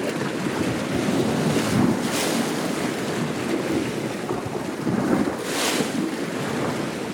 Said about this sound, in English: composed this piece from recordings he made of waves hitting the shoreline and swirling in the rocks along the coast near Rovinj, Croatia.